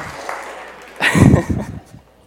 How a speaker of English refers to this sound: Okay, yeah. Let's applaud.